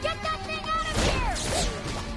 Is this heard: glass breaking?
yes